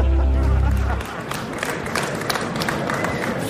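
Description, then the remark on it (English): An audience breaks into loud, sustained applause after a joke about the head of Yahoo, dense overlapping claps steady throughout, opening with a deep, booming crowd roar during the first second. “I think we would all enjoy seeing that by the sound of the applause.”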